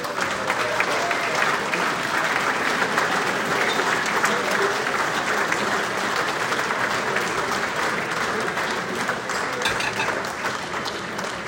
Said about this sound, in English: A huge round of applause, please, for Jeff Merrick.